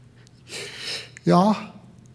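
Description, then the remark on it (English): A person takes an airy, hissing breath in, then releases a short voiced breath out, so the two breaths sound like the name Yahweh, a soft two-syllable word spoken alone. “But Rob Bell noticed and pointed out that the name Yahweh is actually the very sound of breathing.”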